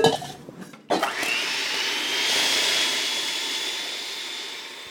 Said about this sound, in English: Now, I like to separate my eggs and beat them up. It makes things a little bit lighter, and I just like the texture better. Now we're going to have a bit of a racket, because we're going to whip up the egg whites.